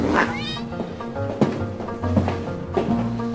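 A cat lets out a loud, brief rising yowl right at the start as it is thrown out of a window by a gangster in the 2014 film Grand Budapest Hotel, then steady tonal music continues with a few sharp knocks; no one speaks.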